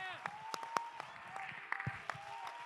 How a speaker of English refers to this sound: Let's clap our hands and say, I'm right where I belong.